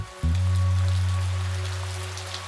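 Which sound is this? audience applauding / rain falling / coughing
rain falling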